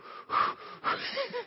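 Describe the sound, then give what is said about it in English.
A person imitates a rhythmic labor breathing exercise, two quick forceful breathy bursts followed by softer panting exhales, with no speech. “I'd been, you know, to the classes, so I knew, you know, the breathing exercise. You're like, come on, honey, you know, breathe like this.”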